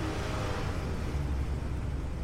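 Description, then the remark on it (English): A steady, low engine rumble from inside a moving bus as it accelerates at night, with a constant broad wash of road noise at an even loudness. No one speaks. “I think the bus is taking a different route back.”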